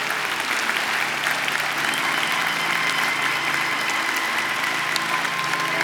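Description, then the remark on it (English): A church audience gives polite, restrained applause to honor mothers, a soft golf-clap patter of many hands that stays even and steady for the whole stretch, without cheering or voices. “Oh, come on, that sounds like a little golf clap.”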